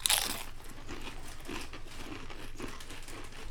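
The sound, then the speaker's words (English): Crisp, crackly crunching of ketchup-flavored Doritos chips being chewed, a sharp bite at the start followed by a steady run of dry, brittle crunches with no talking. “Well, I know in Canada, ketchup-flavored chips are very popular.”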